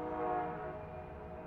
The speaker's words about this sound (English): Doesn't look like they're gonna stop. Maybe there's nobody there getting off or on. Oh yeah, they're coming to a stop. Yeah, they're, you can hear the brakes coming on.